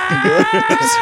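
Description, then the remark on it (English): A voice imitates an anime character's power-up scream, a sustained, strained high-pitched yell held steadily for about a second, with choppy lower vocal sounds pulsing underneath. “Next time on Dragon Ball Z. Still screaming.”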